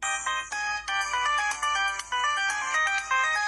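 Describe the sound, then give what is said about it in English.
A bright electronic phone ringtone plays a quick repeating melody of short tonal notes, loud, with no talking over it, for a singer's phone call inviting a singer to perform with her. “And that phone call went something like this.”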